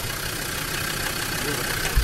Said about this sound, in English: They brought that car from England. That's not even from here. It's a diesel Land Rover 110. That car was never made for this market.